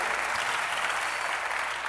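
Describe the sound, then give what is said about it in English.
An audience claps steadily for the full two seconds, a dense, even wash of many hands with no single claps standing out and no voices breaking through. “You are clapping like you don't understand what it means for somebody to go.”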